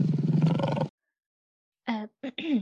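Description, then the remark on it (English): A lioness lets out a low, rumbling soft growl lasting just under a second as she bares her teeth, fairly loud, followed by a pause and then a few short voiced sounds. “flinching in unison as one of the lionesses glared at them and bared her teeth with a soft growl.”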